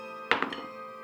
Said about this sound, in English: Not rolling well. I got to get rid of this dice.